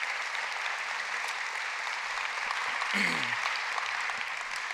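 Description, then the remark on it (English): Steady applause from a church crowd, a dense crackle of many hands clapping at an even, sustained level, with a brief murmur of voices rising faintly through it near the end. The applause is for the church's family ministries team, for pulling off the summer programme. “And so I just think we need to give our family ministries team a round of applause for pulling off this amazing summer today.”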